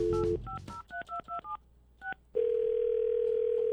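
A phone call is dialed on the Froggy 92.9 radio segment The Neighbor Dispute: a quick run of about seven or eight beeping keypad tones in uneven rhythm, then a steady, loud, low ringing tone that holds to the end. No one speaks.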